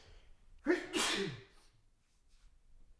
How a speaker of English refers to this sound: oh, I'm going to sneeze.